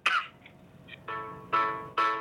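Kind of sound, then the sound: human body sound, a person coughing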